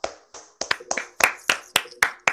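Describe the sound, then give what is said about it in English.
About ten sharp clap-like smacks, made without hands, come in a quick, slightly uneven rhythm with no talking. They are moderately loud, and a few land in rapid pairs. “I wasn't clapping with my hands, by the way.”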